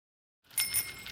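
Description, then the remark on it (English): A bicycle bell rings in quick repeated trills after a brief silence, bright and metallic with a shimmering high tone, loud, with no talking. “Oh, man, if cars had bells, I'd finally get my license.”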